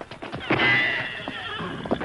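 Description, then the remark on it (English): A horse lets out a loud, wavering whinny lasting about a second, with scattered hoof clops and scuffling sounds before and after it. “Get to the horses.”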